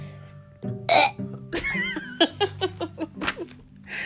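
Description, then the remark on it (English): A voice makes a drawn-out, throaty imitation burp, then breaks into a quick run of bright, rhythmic giggles; a short breathy noise comes before it and another at the end. “And then he burps. How do you burp?”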